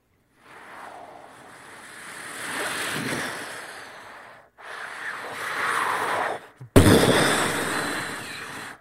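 boat on ocean waves

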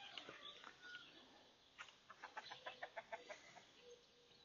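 rooster crowing

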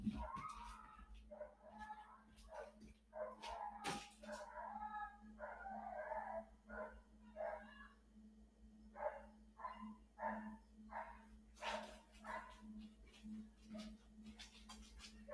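dogs barking outside

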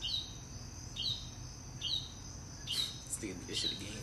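bird chirping

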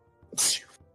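sneeze

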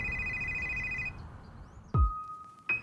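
telephone ringing

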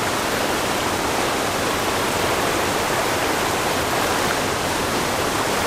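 roar of river rapids

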